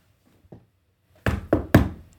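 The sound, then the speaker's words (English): Three loud, heavy knocks on a front door at 9:00 in the morning, evenly spaced and each ringing out briefly, after a couple of faint soft taps. No voices are heard. “He had just closed his eyes 3 hours ago and the disturbance at his front door wasn't welcome.”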